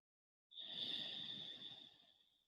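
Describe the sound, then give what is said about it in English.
One long breath in and out by a person, airy and hissing with a thin whistling edge. It starts abruptly, holds steady, then slowly fades over about two seconds, with no talking. “So basically, you put your hand on your chest and one hand on your belly and breathe and just feel which hand moves.”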